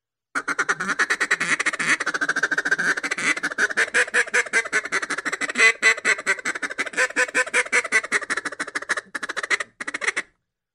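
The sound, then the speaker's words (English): A duck call blown in a fast, continuous refuge feed chatter, a dense run of quick clucking notes lasting about ten seconds, loud with no talking. “That's a refuge feed chatter.”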